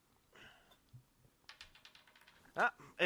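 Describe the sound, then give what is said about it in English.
Dice, including a ten-sided die rolled for damage in a tabletop game, clatter across a tabletop in a quick run of small hard clicks, ending with two louder knocks; a brief murmur of voice comes just before. “I need more available open table real estate because it keeps rolling.”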